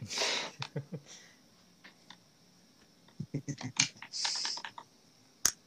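Someone types on a computer keyboard close by, a run of irregular clacking keystrokes in quick bursts with short pauses, ending in one sharp, louder key hit. No one speaks.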